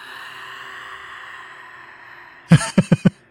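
Heavy nasal breathing: a long, drawn-out airy exhale that slowly fades, followed by four quick, forceful snorting breaths in a rapid rhythm.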